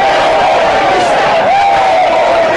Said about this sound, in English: A large crowd gathered in Huntington Beach to protest beach closures. Not much social distancing here.